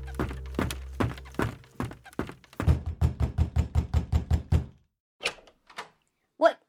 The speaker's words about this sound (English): What is going on? Who is banging on the door? Oh no, you two knuckleheads can't come bursting in here in the middle of the night waking us up, you know?